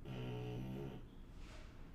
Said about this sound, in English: I don't know if you can hear the doggy snoring. It's pretty funny.